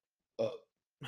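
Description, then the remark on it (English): A single loud burp, short and throaty with a deep resonant rumble, followed after a brief silence by the start of another voiced sound. “hold on, I need to burp.”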